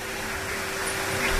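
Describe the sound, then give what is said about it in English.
A vacuum cleaner, run by cleaners at work, runs continuously, a steady, loud whooshing roar with a constant motor hum underneath, holding level throughout with no voices. “Your line's breaking up, and we've got hoovering going on.”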